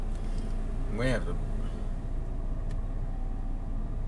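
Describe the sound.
A car passes outside the studio, a steady low rumble filling the background for several seconds, with a brief voice cutting in near the start.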